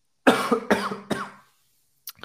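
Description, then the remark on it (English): Three loud coughs in quick succession, each a sharp burst trailing off, followed by a brief soft sound after a pause; no talking. “And excuse me, I just got a cough.”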